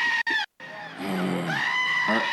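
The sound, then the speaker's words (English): A goat bleats loudly: a short wavering cry, a brief pause, then a long, strained, quavering bleat that carries on to the end. “Goats are loud.”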